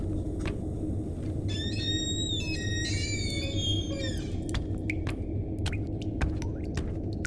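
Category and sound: household object, faucet dripping water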